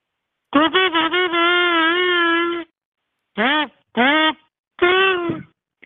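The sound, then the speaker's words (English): A kazoo, pressed against the teeth while blown, buzzes with a nasal, reedy tone: a few quick stuttering toots lead into a long held note, then three short swooping blasts that bend up and down in pitch. “I think it's not a harmonica. What the hell do you call these things? Kazoo.”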